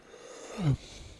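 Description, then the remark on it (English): A single short yawn into the microphone from a person lying on a bed while recording: a breathy rush of air that ends in a brief, low voiced groan, with no talking around it. “I'm sure it's not polite to yawn into the microphone, but I can't help it, and I don't care.”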